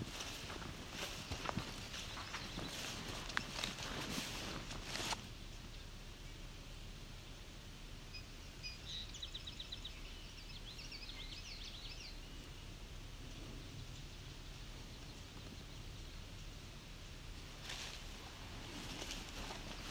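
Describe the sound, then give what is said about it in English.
A swamp sparrow's song on a grassy trail, a faint trill of evenly repeated notes lasting a few seconds, half-buried under steady wind-like noise and scuffing footsteps. “There's a good swamp sparrow example.”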